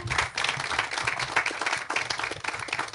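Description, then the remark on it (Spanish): An audience applauds together in the morning as a praise offering to the Lord, a dense, steady wash of many hands clapping at once for several seconds, with no pauses and no voices standing out above it. “Voy a dar un aplauso a Dios.”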